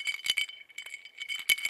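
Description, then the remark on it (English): A glass of Weller bourbon clinks and rattles in a quick series of bright, irregular taps, with a thin high ring lingering between them. No one speaks. “listen to this clink.”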